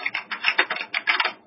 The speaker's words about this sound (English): I can hear your keyboard too.